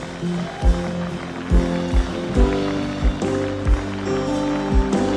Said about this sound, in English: Grab somebody. Grab a friend, a neighbor, anyone, and come forward. Give them a hand clap as they come.